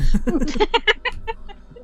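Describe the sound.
A chicken clucks in a quick run of short, choppy calls that rise and then trail off, fairly loud with no one talking.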